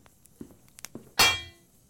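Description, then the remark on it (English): A bear trap set in an office snaps shut and misses, in a single loud metallic clang that rings briefly before fading, preceded by a few faint clicks and rattles. No one speaks. “I don't even know where I got a bear trap. Lucky that missed.”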